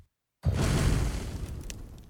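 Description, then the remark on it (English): A voice imitates a somewhat muffled roaring fire somewhere in the distance: after a brief silence, a sudden breathy, rumbling rush of noise starts loud and holds steady for about two seconds, slowly fading a little. “Yeah, basically it sounds like a roaring fire somewhere in the distance.”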